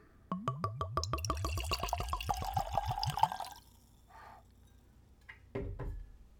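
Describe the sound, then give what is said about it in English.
Aquavit (41.5% alcohol) glugs from a freshly opened 750 ml screw-cap bottle into a tulip-shaped nosing glass in a quick, rhythmic run of gurgles lasting about three seconds, followed by a few soft knocks and light clinks. “Now let's give it a pour.”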